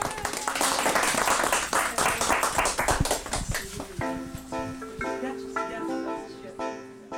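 Applause from a small group: a dense burst of hand clapping for about four seconds that thins out and gives way to sustained, melodic pitched tones.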